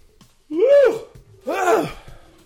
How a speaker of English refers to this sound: Sorry for yawning.